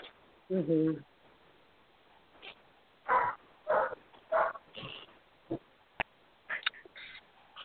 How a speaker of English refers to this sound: No, I'm just going to say, Neo is barking, I think.